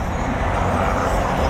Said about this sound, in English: And then way in the back here, you got a helicopter going over.